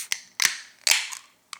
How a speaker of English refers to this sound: All right. Let's grab that glass, grab that can, and let's open her up.